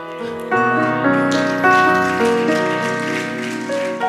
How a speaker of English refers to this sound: I'm glad you clapped your hand, but sometimes ladies don't like to hear them.